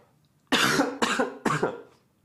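Three harsh coughs in quick succession, each a sharp burst that trails off, with near silence before and after.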